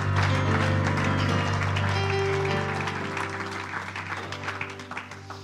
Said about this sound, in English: Everyone give him a hand clap. Praise.